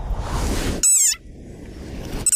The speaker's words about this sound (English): Like this desert rain frog. Squeaking viral sensation. million hits and counting. It sounds like a dog toy. But actually, this is the sonorous war cry of a very angry frog.